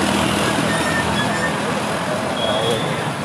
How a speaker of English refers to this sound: This shit is crazy, there's so much traffic. There is literally so much traffic. There must be a lot of disturbance.